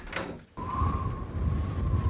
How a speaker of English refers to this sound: This door bolt's stiff again.